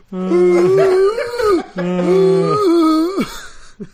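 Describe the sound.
A person imitates a dog struggling to breathe: two long, strained, wavering howl-like whines, loud, ending with a short gasping breath.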